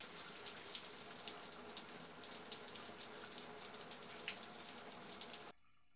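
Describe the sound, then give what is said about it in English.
A shower on a ship runs steadily with a dense hiss of spraying water for several seconds, then cuts off abruptly near the end as the ship's systems are shut down, leaving near silence. No one speaks. “The water stops running.”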